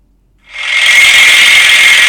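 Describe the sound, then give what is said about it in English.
A handheld electric massager, being tried on the speaker's problem areas, switches on after a brief silence and buzzes loudly and steadily, a constant motorized whir with a raspy, rattling edge. “as I said, it's like a, it's like, looks like a hand whisker, a pneumatic hand whisker, basically.”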